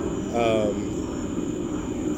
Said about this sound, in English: oh yeah, there's an airplane right now.